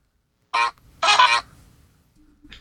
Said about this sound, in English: I've been double honked.